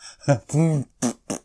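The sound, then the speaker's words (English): A voice imitates farting with four short voiced bursts, the second one longer and wobbling in pitch, all delivered in quick succession with brief gaps between. “Yes, so you've stepped in and you're doing the farts today, aren't you? Yes, I'm doing the farting today.”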